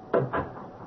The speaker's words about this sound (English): Close your room door while I close mine